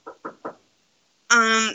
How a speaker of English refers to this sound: Hang on, there's someone knocking on the door at my house. That's spooky.